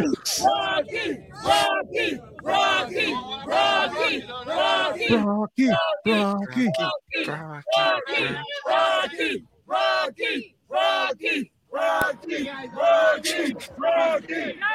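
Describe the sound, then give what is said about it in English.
A crowd of Eagles football fans yells and cheers loudly, many voices overlapping in rhythmic, chant-like bursts with brief pauses, sustained from start to finish. “Look at them Eagle fans.”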